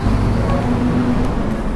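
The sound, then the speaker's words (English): A steady, loud low rumble of a small city bus engine from inside the moving, crowded vehicle at peak time in Mexico City, with a constant droning hum and road noise and no clear voices. “Here we are close to peak time. We're inside the bus. Everybody's squeezing each other.”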